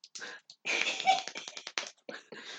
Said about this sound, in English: God. Love the tiny clap.